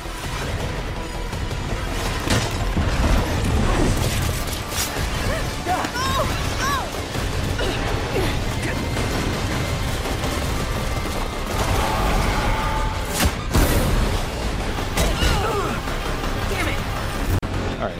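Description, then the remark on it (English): A ship crashing amid a dense, loud barrage of explosions, gunfire-like bursts and heavy impacts, with sharp cracks and booms recurring throughout over a constant roar, and voices faintly mixed in. “Ship is crashing.”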